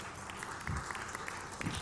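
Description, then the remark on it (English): A crowd applauds steadily, giving a hand clap to the Lord Jesus Christ, many hands clapping at once in a dense, continuous patter that holds at an even level from start to finish with no voices. “Give a hand clap to the Lord Jesus Christ.”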